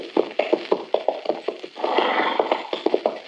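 horse hooves clip-clopping

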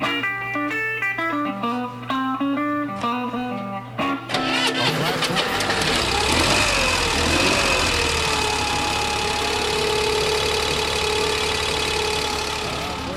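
modified Corvair engine idling

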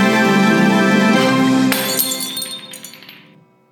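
glasses clinking

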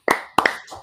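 clapping

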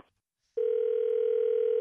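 dial tone

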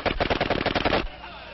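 gunshots fired

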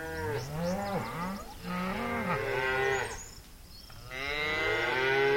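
cattle mooing

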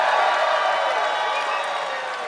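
audience cheering

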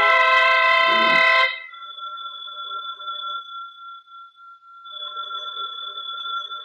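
telephone ringing

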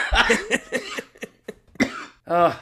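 coughing fit

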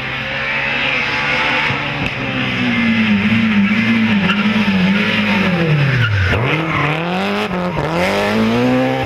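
rally car engine revving

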